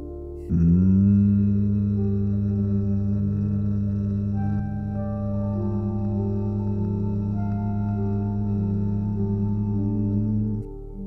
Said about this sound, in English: When you're ready, take a breath in through the nose. But as you exhale, begin to hum. Breathing in through the nose, exhaling to hum.